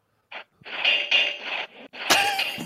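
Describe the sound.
A voice imitates the creaking, grating metal of two suits of armor bursting to life, with a short rasp followed by a long, scratchy grinding noise in several swelling pushes, finishing with a harsher, louder screech.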